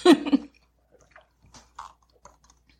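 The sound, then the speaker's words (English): A short slurping burst as someone draws a drink through a straw, followed by a few faint, scattered mouth clicks and swallowing sounds in near silence. “So I need a straw. Okay. All right. Hold on. I have to take a sip.”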